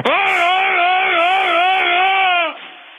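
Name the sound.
a person screaming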